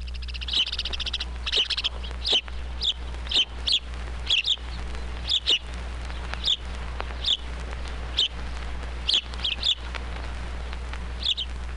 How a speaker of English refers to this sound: Even in quite densely built-up areas, the loud chirp of the house sparrow is often a common sound.